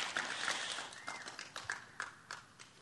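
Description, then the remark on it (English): Quiet audience clapping to thank a group who had stood up front for a long time, a dense patter at first that thins into a few scattered, separate claps before fading out. No one speaks. “Y'all need to clap louder for that.”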